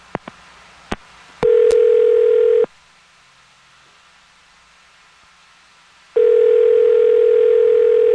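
A few sharp clicks of a phone being dialed, then a steady ringing tone sounds, falls silent for several seconds, and rings again, clear with no one talking.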